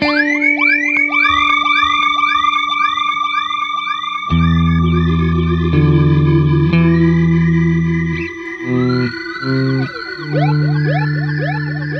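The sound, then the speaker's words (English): A guitar run through an Enzo synthesizer pedal plays alone, first as rapid repeating upward swoops like a siren, then as loud, buzzy sustained synth notes that shift pitch and cut off abruptly. “Which it is, and then the Enzo by itself was doing this.”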